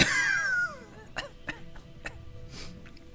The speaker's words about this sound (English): you hear the coughing voice of Grimshale as he crawls out of the inside of the fire elemental.